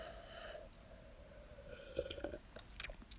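A quiet sip of hot coffee from a cup: a soft slurp followed by a few small wet mouth clicks and a swallow, with no one talking.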